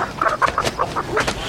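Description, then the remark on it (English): A chicken clucks in a quick, uneven string of short, clipped calls, clear, with no voices over it. “A guy gets out of his car, and there's a chicken in the guy's asshole.”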